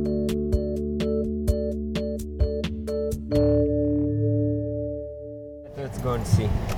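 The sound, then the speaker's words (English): A car's warning chime dings in a steady, rapid rhythm, then a door thunks and a low hum lingers before a rush of outdoor noise as people climb out of the car in a city to walk over to a massive green dumpster. “We get out of the car and walk over to what's called in Hebrew a tzvardea, a massive green dumpster.”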